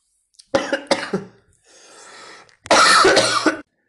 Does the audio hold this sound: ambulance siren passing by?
no